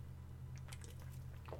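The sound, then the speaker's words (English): A quick sip from a can of mango White Claw hard seltzer: a few soft, wet squishy clicks over about a second, faint above a steady low electrical hum, with no talking. “We need to sip on our White Claw for that one, okay?”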